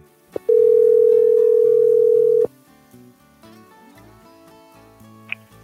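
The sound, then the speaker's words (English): A loud, steady telephone dial tone hums for about two seconds and then cuts off as an outgoing phone call is placed, leaving soft background music and a faint, brief beep near the end. “We're going to get her on the phone”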